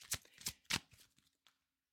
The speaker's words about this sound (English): Shuffling the cards.